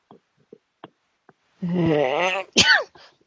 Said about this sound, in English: Sorry about the coughing, guys. There's nothing I can do about it. It takes a while for this cough medicine to kick in.